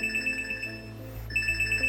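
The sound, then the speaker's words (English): A phone's electronic alert tone for a health notification chirps in quick, repeated pulses, pauses briefly, then resumes its bright beeping pattern, clear, with no one speaking. “So that just sent out a health notification?”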